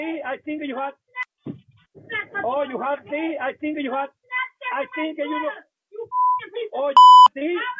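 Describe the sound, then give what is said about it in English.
An agitated woman talks rapidly, then short steady censor bleeps cut in near the end over her profanity: a softer tone followed by a loud, piercing beep replacing words mid-speech. “Notice the beeps that we had to put into this, because the profanity that the girlfriend is using.”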